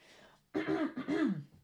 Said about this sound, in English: So, hold on, clear my throat. Excuse me.